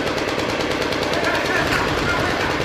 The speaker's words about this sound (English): Gunfire erupted. Another suicide car bomber was trying to break through.